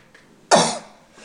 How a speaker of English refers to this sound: Sorry, I sneezed.